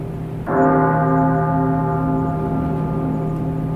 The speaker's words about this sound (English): You guys hear the dong of a bell.